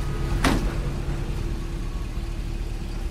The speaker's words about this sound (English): so I'm just getting all of the sound of, like, the truck and everything.